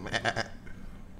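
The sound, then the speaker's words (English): A goat bleats in three quick, wavering, nasal pulses, then the call fades into a quiet background hum. “Sometimes you have good chemistry with goats.”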